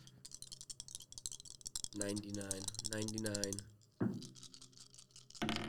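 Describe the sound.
A quick flurry of hard plastic clicks and rattles as polyhedral dice, a D100 roll with blood dice, tumble across a tabletop, fairly loud, followed by people talking over the settling clatter.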